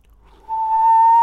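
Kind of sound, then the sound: sound effect, whistling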